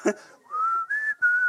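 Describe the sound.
A person whistles the short three-part revolution signal from The Hunger Games: a rising note followed by two steady high tones, each about a third of a second, clear.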